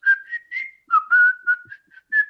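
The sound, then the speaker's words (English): A person whistles a short, bouncy melody from a song, the clear pitched notes sliding and stepping in a lively rhythm, with no talking. “Like kind of like the whistle part, like the.”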